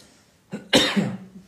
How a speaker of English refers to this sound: I have no idea why I'm coughing. I was not coughing the whole day. And all of a sudden now.